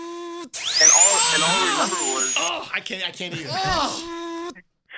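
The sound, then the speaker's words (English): A person vocally imitates a dentist's drill: a high, steady whine rises and holds for a couple of seconds over a wavering, groaning voice, then the person continues making strained vocal sounds. “I can't stand that sound, the drilling, and then, oh, God, I get the chills, man.”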